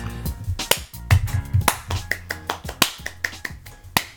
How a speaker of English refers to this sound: Your clap is horrible.